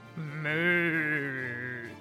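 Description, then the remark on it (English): A person imitates a cow's moo with one drawn-out, steady vocal call lasting about two seconds, fairly loud, with no other talking around it, mimicking the cow Tickles to draw a monster's attention. “Here he did an incredible impression of Tickles, and he mooed to draw the attention of the monster.”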